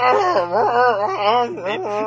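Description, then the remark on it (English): A single voice imitates a Wookiee's growl: a loud, wavering moan that swoops up and down in pitch for about two seconds without a break. “Sound like a car crusher somewhere?”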